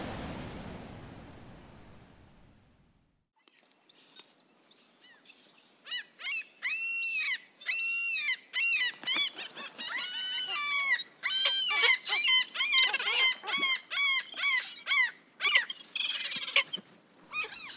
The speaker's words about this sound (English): that is the sound that I love the most, the sound of seagulls and all kinds of beach birds, because the beach is my favorite place by far. But a beach without the noise of these birds isn't complete.